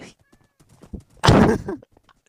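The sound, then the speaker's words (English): A few soft, scattered hoof clops, then a loud horse neigh bursts out for about half a second before fading into a couple of faint thuds. “Still, bro, it's a fucking horse.”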